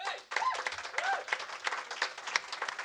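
Steady audience applause welcoming the first guests of a show, with dense, crackling claps filling the whole stretch, with a few cheers and whoops rising over the clapping.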